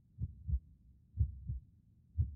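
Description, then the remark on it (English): A slow, muffled heartbeat: three low double thumps in a steady lub-dub rhythm, deep, with nothing else heard around them. “When he feels a heartbeat next to his own.”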